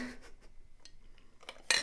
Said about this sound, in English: Let me take a sip of a non-alcoholic beverage.